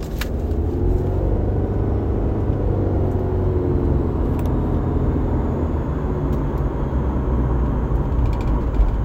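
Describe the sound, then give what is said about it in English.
Steady engine drone from the driver's own car with a thin, sustained whine riding above the low rumble, continuous and fairly loud throughout, with a few faint clicks. “It's like a whining noise. What is that noise?”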